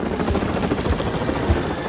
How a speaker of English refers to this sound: Just then, Thomas heard Harold the helicopter flying overhead.